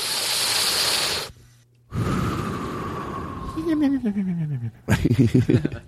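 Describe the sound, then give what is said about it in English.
A voice imitates a cartoon cat sleeping: a long noisy inhale, then a wheezy, whistling exhale that slides downward and breaks into a fluttering, snoring rattle, fairly loud. “That's how a cartoon cat sleeps.”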